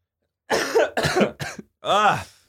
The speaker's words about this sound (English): I still got this fucking cough. Yeah, mine came back. It's hanging on.